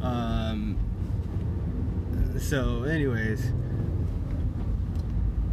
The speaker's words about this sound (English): sorry, driving, traffic, headache, crap, can't pull up my notepad.